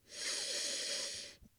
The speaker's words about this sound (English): It legitimately smells like cough syrup. Like, to just take a nice big whiff,